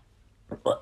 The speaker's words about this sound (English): I got a Desperado, and then I guess I drank half of it and then went to bed. Shame, really, though, because I can't drink that anymore, because it's gone all flat and gross. Should I have a sip? I'm actually going to have a sip.